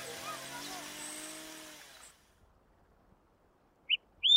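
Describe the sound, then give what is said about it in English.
A noisy, droning rumble fades out into near silence, then two short, bright bird chirps ring out close together at the very end, clear; birdsong recorded in Rocky Mountain National Park. “What I'm doing when I record certain birds in Rocky Mountain National Park that are projected to not live there in the future because of climate change is creating acoustic fossils.”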